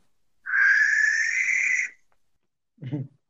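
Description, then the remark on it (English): A single long, harsh, hissing screech of a barn owl lasts over a second, loud, followed after a pause by a brief, lower-pitched sound. “the barn owl, which again, I'll quickly give you guys a sound clip of.”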